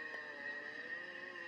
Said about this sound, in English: Oh, look at that poor little tree shaking, scared. That little baby. Let's bring it on, boys. I don't know what the hell he said, but here come the chainsaws.